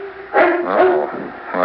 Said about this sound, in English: They've got themselves a dog. Not just any dog, mind you, but a Dane. Listen, not just any Dane, but a Harlequin, for heaven's sake, cavorting in the sprinkler